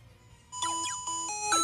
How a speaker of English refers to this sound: So before we reveal today's categories, why don't we do a little roll call in terms of our buzz-in sounds.